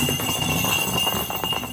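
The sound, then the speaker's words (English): A steady, high metallic jingling from the internal bells of a goalball thrown as a smooth rolling ball, a continuous rattling shimmer with quick irregular clinks and a low rumble underneath, with no voices. “You got a smooth ball that's rolling in the bells or obviously moving within the ball.”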